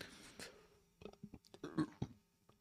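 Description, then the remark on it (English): A brief burp rumbles out, preceded by a few soft mouth sounds and breaths, with no talking. “Oh, shit, hold up. I burped, and I almost fucking threw up.”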